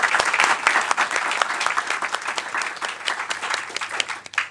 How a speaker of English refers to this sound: So I think I'll stop there. Thank you very much. Can I ask for a round of applause?